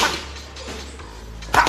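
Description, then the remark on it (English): Two sharp, snappy smacks of a light boxing jab hitting training pads during pad work, about one and a half seconds apart, with a low steady hum in the quiet gap between them and no talking. “Nice and light, let's get the jab going first.”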